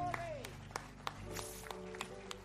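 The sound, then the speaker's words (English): A church audience applauds, with loose, scattered claps rising over a sustained hum of background tones and a murmur of voices, moderately loud. “Let's give Dr. Scott Camp a round of applause.”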